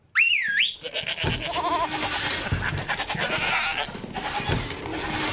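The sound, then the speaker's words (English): Several goats, kept behind a door in the kitchen of a pizza restaurant as a security system, bleat loudly, their overlapping cries crowding together in a noisy chorus after a brief wavering tone at the start; no one speaks. “Get ready for goats.”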